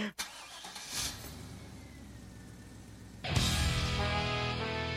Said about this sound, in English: And I just thought, actually, there is one thing I don't like, and that is, why does there need to be a car revving up at the beginning?